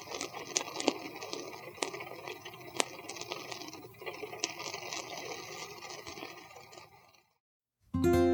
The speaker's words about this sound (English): We can fade out with some rain.